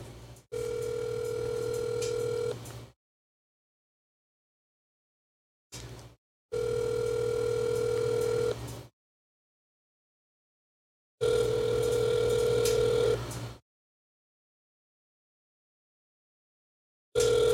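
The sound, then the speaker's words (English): A phone ringback tone repeats three times, each steady buzzing ring lasting about two seconds with silent gaps between, going unanswered. No voices are heard. “Is he just not going to answer his phone now?”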